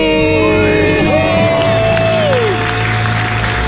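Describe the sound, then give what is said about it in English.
A large crowd cheers and applauds loudly after a countdown to a debt-free scream, celebrating a couple from Denver, Colorado, who paid off their debt. Whoops and a sustained roar fill the whole stretch, continuous and dense throughout. “And the crowd goes wild.”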